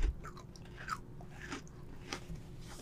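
Crisp crunching and chewing of a cookie, with several sharp bites and moist mastication sounds repeating irregularly, no talking.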